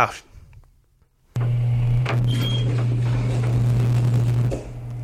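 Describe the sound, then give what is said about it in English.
A sound effect of an elevator getting stuck: after a brief quiet, a loud, low mechanical hum starts abruptly, with grinding rumble and a few clunks over it, then drops off near the end. “Dan, you and I are stuck in an elevator”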